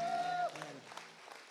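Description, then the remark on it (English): A crowd applauds the worship band on a rainy evening as a sustained musical note fades out, the clapping steady and moderately loud, a dense, scattered patter. “Can we give the worship band a round of applause, please?”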